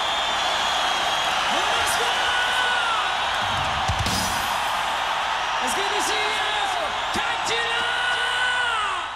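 A huge concert crowd roars continuously as the band takes the stage, a dense wall of cheering with whoops and yells rising above it, plus a few sharp bangs and high whistles cutting through the steady din.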